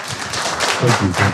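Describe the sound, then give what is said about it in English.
A short burst of applause, many hands clapping in a dense, steady crackle for over a second, with a voice briefly audible underneath toward the end. “Was that an applause for me, or is this a general applause?”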